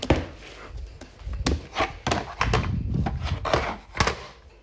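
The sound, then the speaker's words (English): Bread dough being knocked back again before its second rise and put into loaf tins: a run of dull thumps and soft slaps in an uneven rhythm, with quieter rustling and handling noises between the blows. “So I'm just knocking it back again and putting it into loaf tins.”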